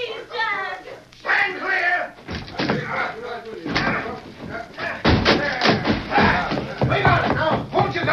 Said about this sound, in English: Open up or I'll bust in the door!